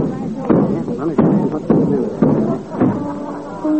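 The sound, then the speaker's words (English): Heavy trunks are moved around a house, thumping and banging in a rough, uneven series of about six loud knocks, with a person's voice grunting and straining between the impacts. “can't you be more quiet with them trunks? How can I concentrate on my music with you banging and grunting all over the house?”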